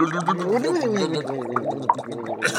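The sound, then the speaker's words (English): A person gargles a mouthful of water for nearly three seconds, a bubbly, wavering tone with shifting pitch and irregular wet crackles, fairly loud throughout. “Mom's filling up with water.”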